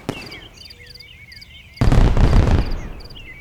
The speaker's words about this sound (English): As you are sitting in the back of the cart, you hear three fireworks go off.